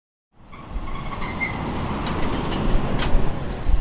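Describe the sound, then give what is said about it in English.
Steady, heavy rumble of a truck named Buster rolling down the road, with deep engine drone and road noise filling the cab continuously, a few faint rattles riding on top and no voices. “What's the truck we're riding called?”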